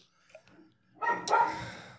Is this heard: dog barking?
yes